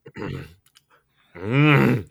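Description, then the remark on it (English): A man imitates a giraffe with his voice, the noise fans call "a Pierre Engvall": a short gruff grunt, a brief pause, then a longer, louder throaty groan that rises and falls in pitch. “There's our giraffe.”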